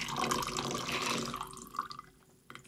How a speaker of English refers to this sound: Okay, I'm gonna pour some ice in, and then I'm gonna strain the rest.